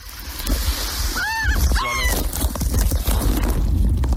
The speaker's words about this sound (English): Now, again, if you want to know what it's like to be swallowed by a whale, this is what it would sound like if you plan on just kayaking on the Sound today or anything.